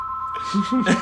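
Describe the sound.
A house phone rings with a steady electronic tone running through the whole moment, while a voice starts talking over it partway through.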